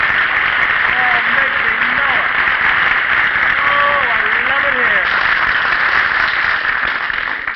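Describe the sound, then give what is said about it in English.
A studio audience applauds steadily for several seconds as Phil Harris walks out on stage, a dense, even wash of clapping with faint voices and whoops rising briefly beneath it. “Phil, how in the world can you walk out on the stage like that and ask an audience to applaud you?”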